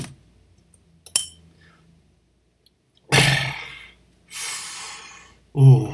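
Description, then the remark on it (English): Someone drinks liquor from a tall glass: a single glass clink, a quiet pause, then two loud, breathy exhales and a short satisfied gasp after the swallow. “I needed that. I needed a tall glass of some of that.”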